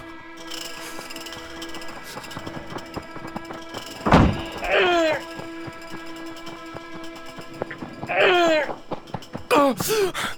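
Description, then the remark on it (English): A car boot lid slams shut once, with a heavy metallic thud, onto fingers wedged in the gap by a person inside the boot. Steady chirping insects continue in the background, followed by several high, wavering wailing cries. “It feels like one of them banged into the car. The lid had slammed.”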